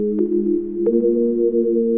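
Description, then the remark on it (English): Synth keys from a Pigments keys preset demo in the Mellofi lo-fi plugin, with its effects switched on, play warm, sustained mid-low chords, shifting twice with soft attacks at a steady, moderate loudness and no voices. “So this is a Pigments keys.”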